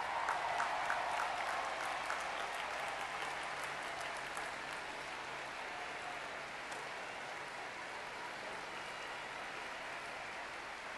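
A large crowd of students stands and applauds steadily for their families and mentors, a dense wash of many hands clapping that stays fairly even throughout, with a few sharper claps standing out early on before easing slightly.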